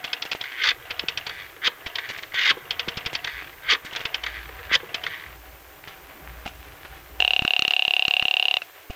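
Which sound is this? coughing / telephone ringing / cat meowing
telephone ringing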